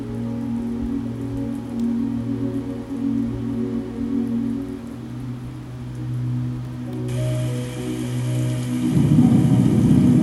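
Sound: rainstorm with thunder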